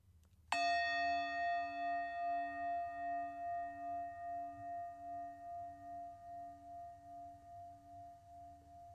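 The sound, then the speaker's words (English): A single meditation bell is struck once, ringing clearly with a bright attack, then a long, slowly fading resonance that pulses gently as it sustains over a faint low hum. “Your next bell will be in about 5 more seconds.”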